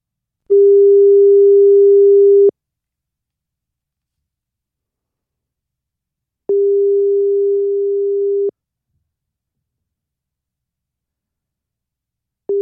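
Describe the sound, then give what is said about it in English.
A phone ringback tone on a call: steady electronic tone bursts about two seconds long, separated by roughly four seconds of silence, clear and fairly loud with no voices. “This is ringing.”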